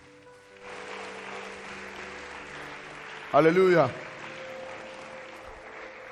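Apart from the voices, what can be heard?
audience clapping hands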